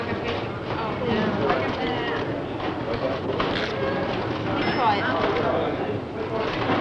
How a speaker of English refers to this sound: The happy sound of the cash register echoes across the land.